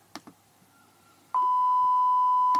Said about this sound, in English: And then it's beeped. It's redacted.